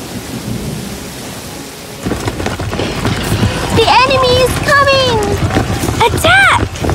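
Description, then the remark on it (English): A thunderstorm with heavy rain hissing steadily and deep thunder rumbling, swelling louder after the first couple of seconds, with rising and falling whistling tones cutting through near the end. “Off they went in the helicopter through the mighty storm.”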